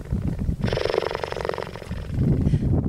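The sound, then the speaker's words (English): A cheetah purrs: a deep, rumbling purr with a steady pulsing rhythm, loud, rising from a low growly start and settling back into a softer rumble. “So here's a cheetah purring.”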